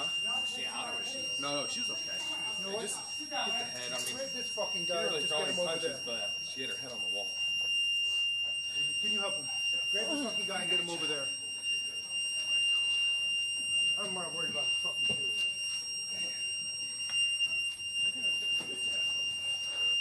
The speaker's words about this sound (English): I guess that sound is the alarm in the courtroom.